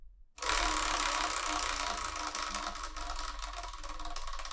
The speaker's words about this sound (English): What we're going to do is we're spin the Wheel of Manga. Whatever number it lands on, that's what we're reviewing in the next episode of the Spiraken Manga Review, episode 512.